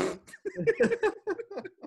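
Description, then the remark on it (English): A loud vocal laugh that comes out as a sputtering, fart-like noise: a quick run of short, buzzy voiced bursts over about two seconds, with no talking. “I don't think you did it on purpose, but you did the laugh noise as like a fart noise.”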